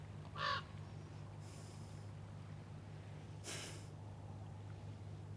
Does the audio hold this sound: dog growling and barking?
no